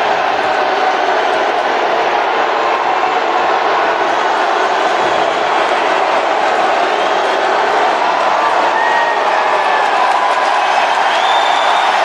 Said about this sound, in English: It's from a Donald Trump rally somewhere in the last 2 weeks. That is one of the best things I've ever heard. It is amazing. It is, I don't know, it's cute. It's just cute. Listen to all these people cheering.